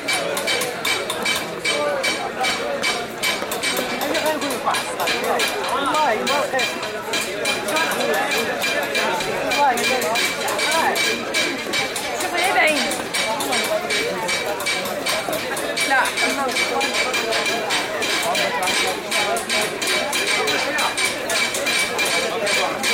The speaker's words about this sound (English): In the Place Safarin, the stone chiselers work nearby the men who hammer the designs on brass trays. And sometimes it seems as though the rhythm of one is picked up by another.